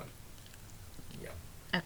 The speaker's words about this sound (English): Taco Crunch.